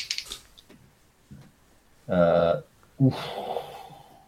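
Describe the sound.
A voice imitates heavy, rasping breathing: a loud voiced wheeze, a short pause, then a longer huffing exhale after some faint hissy breaths.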